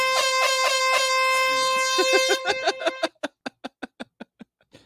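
signal or alarm, air horn blast

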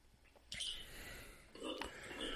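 human body sound, hiccup

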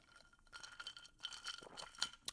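household object, ice clinking

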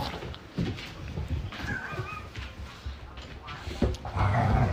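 animal, dog making noise

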